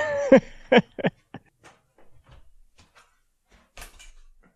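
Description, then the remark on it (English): A hallway closet door opens with a few quick creaking knocks, followed by scattered soft clatters and bumps as a patio chair is pulled out, then one last louder clunk. “All right, I'm sitting in a patio chair from my hallway closet,”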